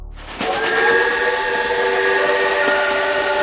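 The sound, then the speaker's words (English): A loud steam train whistle cuts in after a brief moment and holds a steady, multi-toned chord, with a hissing, rumbling rail noise running underneath throughout. “Wait, I'm not on a train.”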